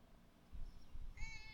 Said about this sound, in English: Look at that cat, though. He's cute. All right. Let me hear your purr.